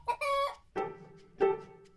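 A chicken clucks and squawks: a quick high squawk, a drawn-out cackle, then two separate throaty clucks trailing off, with no talking.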